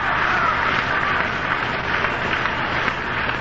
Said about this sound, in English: Crowd, as you can hear in the background, coming to life. They know the big bats are coming up.